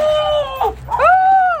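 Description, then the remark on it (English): A goat bleats twice, loud, high-pitched and drawn out, the second call longer and slightly wavering, with a brief pause between them and no talking. “Never seen a goat like this before.”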